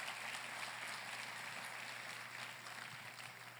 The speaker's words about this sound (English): Go ahead and give him a round of applause.